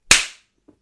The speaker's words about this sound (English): Okay, I'm going to count down from three. I'm going to go 3, 2, 1, and then clap. And, you know, when I say clap, is when we're both meant to clap at the same time.